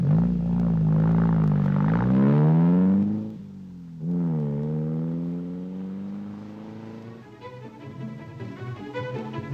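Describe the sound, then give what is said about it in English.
A car engine drives along, its pitch climbing as it accelerates, dropping at a gear change and rising again, then easing into a steady hum with light rattling and ticking. “I'll turn the car around.”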